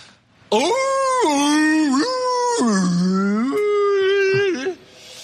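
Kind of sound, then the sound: vocal imitation, voice imitating whale song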